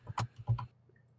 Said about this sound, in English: Don't start typing again. I'm watching the page.